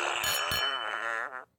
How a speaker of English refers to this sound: Where's my fart machine?